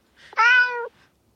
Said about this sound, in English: You'd think they could at least put it in stereo. I should pan it. Oh, my word, that's awful. They sound mean, those cats. There's definitely a Siamese in there.